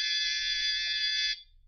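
A doorbell rings with a single steady, bright electric buzz that holds for just over a second and then cuts off abruptly, leaving a low hum. No one speaks.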